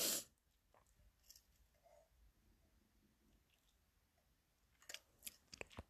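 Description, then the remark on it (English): Someone takes a drink of coffee, with a brief bump at the start, soft gulping swallows, then a few wet mouth clicks near the end. Quiet, and no one speaks. “Let me take a big gulp of this.”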